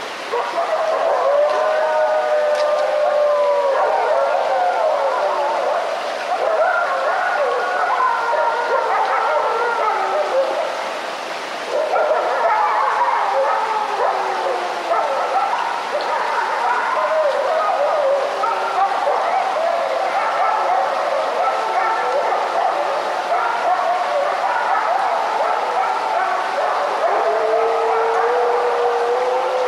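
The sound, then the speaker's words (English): A wolf pack in the Great Smoky Mountains National Park howls and yips together, overlapping wavering cries and sharp yelps rising and falling continuously for about half a minute, loud. “Jonathan Storm got up close to eavesdrop on this wolf pack reclaiming its home turf in the Great Smoky Mountains National Park.”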